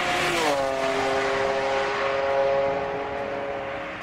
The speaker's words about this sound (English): When I pulled the handle on my car door, I noticed a car running down the street without lights on. When I turned to face the car, the lights came on bright and it sped past me at lightning speed, like it was warning me to mind my own business.